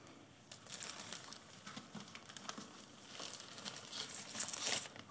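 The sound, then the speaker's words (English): Dry crinkling and rustling of a piece of paper being unfolded, a continuous run of small crackles that grows slightly louder toward the end, with no voices. “What does the next one say? Our next piece of paper says, Saviour, freedom from sin.”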